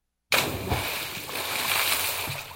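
A sudden loud splash as someone cannonballs into water, followed by a couple of seconds of churning, sloshing water.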